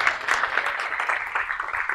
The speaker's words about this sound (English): And then we've got the wonderful Katie Wilson. Round of applause for Katie.